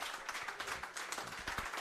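A crowd applauds with dense, steady clapping, many overlapping hand claps forming a continuous crackling wash of sound that stays fairly even throughout.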